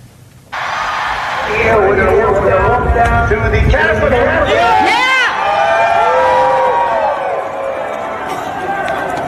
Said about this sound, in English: And you can hear the audio, and you'll be able to hear to some degree how the crowd responds.